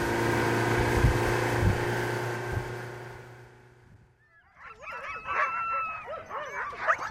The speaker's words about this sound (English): Back on the island, teams of huskies bark restlessly in the midday sun, tethered to squat wooden doghouses.